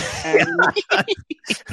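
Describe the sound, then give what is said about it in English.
A lyrebird imitates an old man coughing: a brief tonal warble, then a run of short, hoarse, raspy bursts in quick, uneven succession, fairly loud. “Okay, so then the dancer tries to seduce the lyrebird, like she did at the start of the episode, and the lyrebird starts coughing like an old man.”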